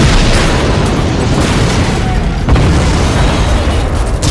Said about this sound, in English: In a split second, four other massive explosions encompassed the body of the gunboat.